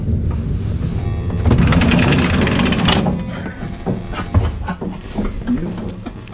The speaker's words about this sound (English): Door opening.